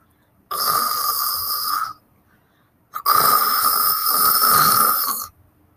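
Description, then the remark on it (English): A man snoring, heard from one room away in a dark house, in two long, rasping breaths separated by a brief pause, the second drawn out longer than the first, with no talking. “I could hear the sound of my dad snoring from one room away.”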